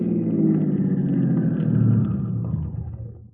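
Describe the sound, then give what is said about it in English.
A car engine hums with a steady low rumble, then eases off and quiets toward the end as the car pulls into a gas station in the hills past San Bernardino at about 9 o'clock at night and slows. No voices are heard. “About 9 o'clock at night, I pulled into a gas station in the hills up past San Bernardino.”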